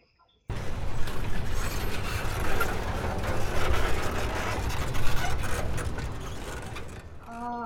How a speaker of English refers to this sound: No, that screaming, rending sound of chain link being torn apart, it ain't my kind of music.